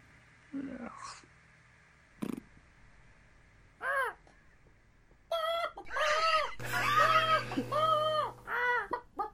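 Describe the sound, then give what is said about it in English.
Harsh, crow-like squawks and caws from ouzel birds, starting as scattered single calls, then crowding into loud, overlapping screeches toward the end. “Oh, bloody hell, it's an ouzel bird. Run, the ouzel birds are after us.”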